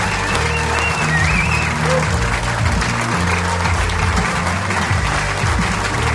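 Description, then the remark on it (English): A Sydney audience stands and breaks into loud, sustained applause welcoming guest Sam Willoughby, a dense, steady roar for about six seconds, with scattered cheers and a low, steady musical hum underneath. “I want you to stand up and give a warm Sydney welcome to big man.”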